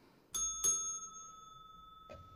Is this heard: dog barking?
no